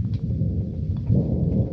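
A deep, continuous rumble of thunder from an approaching storm rolls along for a couple of seconds, swelling slightly toward the end, heavy and low with no voices over it.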